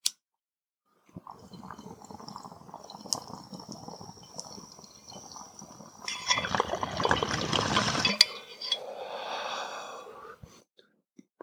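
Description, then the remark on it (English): A bong hit, the first of the day: water bubbles and gurgles steadily for several seconds, surges into a loud, rough rush near the end, then trails off into softer bubbling and a glassy clink. “Oh yeah, first hit of the day, baby.”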